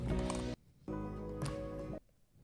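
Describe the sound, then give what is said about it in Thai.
Two bursts of rapid, dense clacking from typing on a mechanical keyboard, played as keyboard ASMR, separated by a short quiet pause and ending in silence, with no voices. “เป็น ASMR ฟังคีย์บอร์ดนะ”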